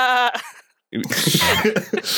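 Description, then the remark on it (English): A person's voice gives a short nasal call, pauses, then lets out a longer, rough, wavering bleat imitating a sheep, loud. “I'm a sheep.”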